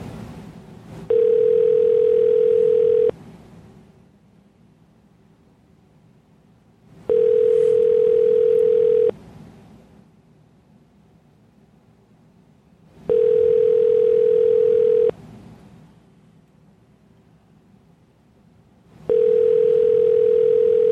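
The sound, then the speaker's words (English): A phone line rings out on an outgoing call, a steady electronic ringback tone repeating four times in two-second bursts with quiet gaps between, and nobody picks up. “She's not gonna recognize the number, but I'm gonna call her and see if she'll answer.”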